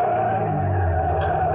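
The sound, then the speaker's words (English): A car roars up at night, its engine loud and steady, with a brief screech of tires as it pulls in alongside another car and cuts it off. No one speaks. “A car. It had come out of nowhere. It was pulling alongside, cutting me off.”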